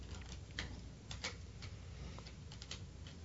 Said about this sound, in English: Once again, folks, he's shuffling the deck.